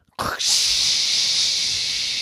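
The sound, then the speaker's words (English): A voice imitates a toilet flushing with a loud, steady, breathy hiss that starts abruptly and holds for about two seconds without fading. “So the very next time he went to the bathroom, he went, "Mommy, I'm flushing the toilet.”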